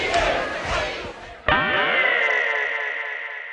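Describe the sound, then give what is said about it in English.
A big wrestling crowd roars and cheers steadily as Johnny Saint defeats McManus on a disqualification, then halfway through a sudden louder surge erupts and holds with a ringing, sustained edge as the noise slowly tapers. “But the net result, the crowd are happy.”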